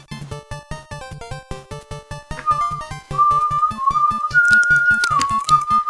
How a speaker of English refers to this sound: They can hear you whistling. I know. But it's a really good melody, so that's okay. And you have a really good sense of pitch.